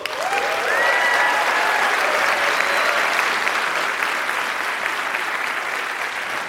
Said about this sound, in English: So let's get started. Let's meet and applaud our debaters. First, arguing for the resolution tonight will be IBM Project Debater.